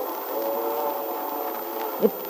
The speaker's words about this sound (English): It sounds like a train.